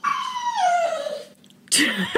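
A dog lets out a long, falling whimper that trails off, then after a brief pause gives a sharp, high yip followed by a shorter whine, fairly loud.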